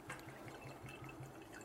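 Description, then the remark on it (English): A small pour of 122-proof bourbon glugs steadily from a bottle into a glass, a quick rhythmic gurgle of several pulses, fairly quiet, with no voices over it. “Ooh, so I ain't gonna pour that much.”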